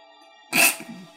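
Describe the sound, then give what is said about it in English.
A single sudden sneeze bursts out, sharp and loud with a bright hissy blast, then trails off quickly into a brief rough exhale. “Bless you. Bless you.”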